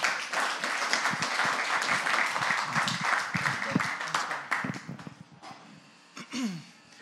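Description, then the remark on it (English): A crowd applauds the first speaker at a talk event, with dense, steady clapping that holds for about five seconds, then thins out and fades, with a few murmuring voices and a brief rising tone near the end. “So without further ado, let's give a round of applause for our first speaker,”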